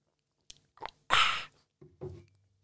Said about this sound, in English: Hang on, a sip of coffee.